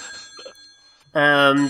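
A Galaxy S10 mobile phone ringtone cuts in loud after a second of faint murmuring, a steady, buzzy electronic tone that carries on to the end.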